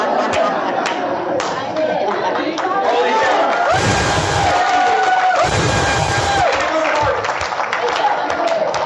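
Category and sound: crowd, audience applause and cheering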